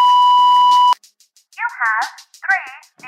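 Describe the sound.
A loud, steady voicemail beep holds one pure tone for about a second, then cuts off. After a short pause, a person starts speaking.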